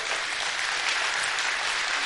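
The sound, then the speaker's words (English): A church audience claps together in a steady, dense wash of applause that holds at an even level for a couple of seconds, with no voices rising above it. “As you're clapping, there have been moments in which I'm like, okay, I could probably.”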